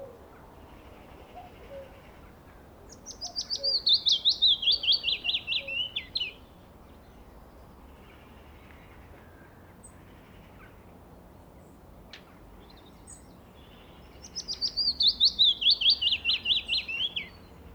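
A willow warbler sings two clear phrases, each a sweet descending cascade of high notes lasting about three seconds, separated by a long pause over faint outdoor background.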